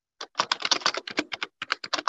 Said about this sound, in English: And somebody's clicking. I can hear clicking, so please mute yourself. Whoever's clicking, okay? Please mute yourself.